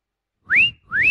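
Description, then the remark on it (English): Two loud whistled notes, each sliding sharply upward, given back to back like a bird's call imitated by a person's whistle, with no talking. “No, my nose does not do bird calls.”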